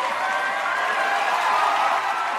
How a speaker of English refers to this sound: Yeah, please stop cheering, please.